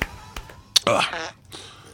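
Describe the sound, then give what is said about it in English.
A short, buzzy whoopee cushion blat from the crowd with a wobbling pitch that sputters out after about half a second, preceded by a few sharp clicks and taps. “Please, with the whoopee cushion noises.”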